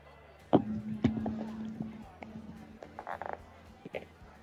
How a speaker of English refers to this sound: Okay, I just have to roll this myself. All right, just roll me one more d10.